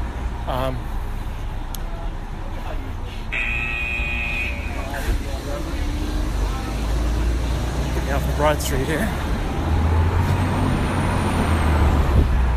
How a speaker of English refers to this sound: Excuse the bus, it's heading to New York City.